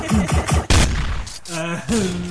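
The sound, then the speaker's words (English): A rapid burst of loud gunshot sound effects, several shots in quick succession ending in a bigger blast, followed by a couple of drawn-out, shouted tones. “Do you want to do some gunshots? We want the gunshots.”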